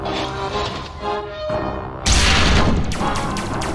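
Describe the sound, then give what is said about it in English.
A steady mechanical hum gives way to a sudden, loud blast as a ship's massive forward cannon fires at alien scout aircraft and the shells explode, a crashing boom that rumbles and crackles as it slowly fades. “The massive gun swiveled and fired in the directions of the scouts. The cloud brightened as the shells exploded, sending shrapnel and a concussive force that knocked the small alien aircraft out of the sky.”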